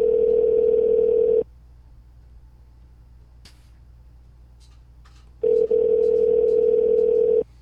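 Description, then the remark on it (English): Two long ringback tones of an outgoing phone call to a man, a steady electronic purr lasting over a second each, separated by about four seconds of near silence with faint background noise. “I'm calling him.”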